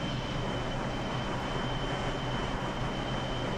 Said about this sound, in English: Can you hear that? Yeah. Alright. So you're in the train now. That's loud.